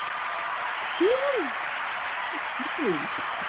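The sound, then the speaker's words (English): A hand clap sound effect: a steady, dense wash of clapping that runs the whole time at an even level, with a few short rising-and-falling vocal whoops cutting through it. “I needed a hand clap.”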